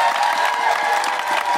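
An audience applauds steadily, a dense wash of clapping that stays loud and even throughout, with no one speaking over it.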